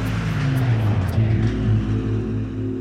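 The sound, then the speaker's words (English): The engine of an off-duty taxi roars steadily and loudly, its low droning hum holding for a few seconds as it speeds around a bend on Peachtree Street in Atlanta toward a couple crossing mid-block, with no voices. “His car is heading right for the couple.”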